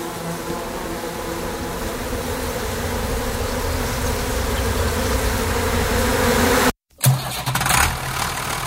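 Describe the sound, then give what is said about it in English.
A steady, loud bee buzzing hums continuously for several seconds, then cuts out abruptly before a brief scratchy burst of noise. “And anyway, bees are typically one of the good guys.”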